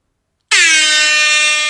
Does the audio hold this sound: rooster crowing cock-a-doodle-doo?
no